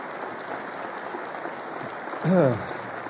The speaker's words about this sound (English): That's really kind. Thank you for that welcome. And if you're a guest here, the applause is not for the incredible running on the screen there.